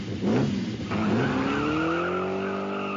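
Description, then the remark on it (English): A sports car engine revs and climbs in pitch as tires squeal, loud, a short burst of hard acceleration with no voices. “Of course, he prefers the pearl white to the cherry red, but you can't fit three kids and a dog who's prone to car sickness in a sports car.”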